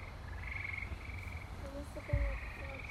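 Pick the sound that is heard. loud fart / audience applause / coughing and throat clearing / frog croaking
frog croaking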